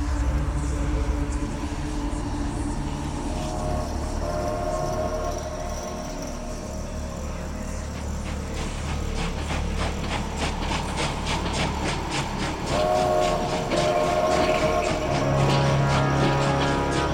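A train rolls steadily along the rails, a continuous heavy rumble with a rhythmic clickety-clack that grows more pronounced partway through, loud, with no voices.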